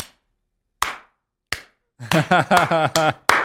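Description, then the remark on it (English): Sharp hand claps ring out, three slow and evenly spaced at first, then quicker, steadier claps continue while a voice sounds over them. “He just starts clapping, and I'm like looking at him all puzzled.”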